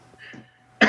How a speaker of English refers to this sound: I just did that. I was just blowing my nose.